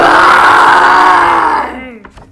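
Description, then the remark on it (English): A person imitates a lion's roar: a single loud, raspy, drawn-out bellow lasting under two seconds before tapering off into a few faint breathy sounds. “Then he roared very loud.”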